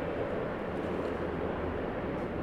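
vehicle, airplane flying overhead

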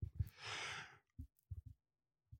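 human body sound, yawn

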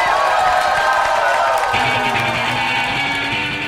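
crowd, audience applause and cheering

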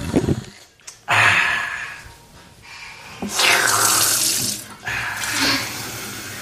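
household object, water running

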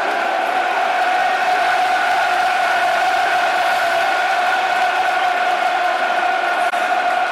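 crowd, football stadium crowd cheering

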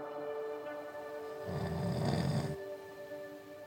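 human body sound, man snoring

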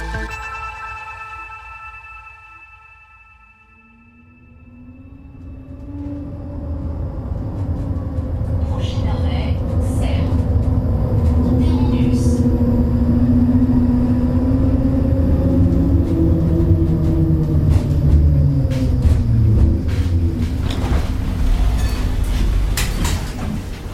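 vehicle, tram running on rails

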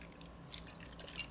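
food or drink, sipping a rum cocktail

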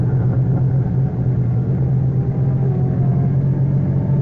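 vehicle, car engine driving away

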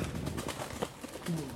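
bird, pigeon cooing

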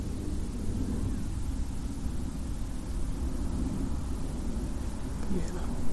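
vehicle, airplane flying overhead

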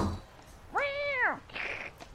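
animal, cat meowing

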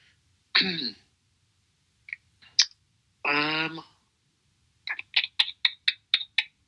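household object, typing on a keyboard

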